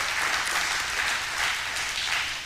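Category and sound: crowd, audience clapping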